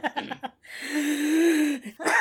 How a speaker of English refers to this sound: Yeah, sorry. I was trying to do like a gasp of realization, but I breathed in too hard and I was choking.